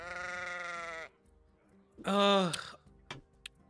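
Two clear sheep bleats: a long, steady bleat lasting about a second, then a brief pause before a louder, quavering one, followed by a few faint clicks.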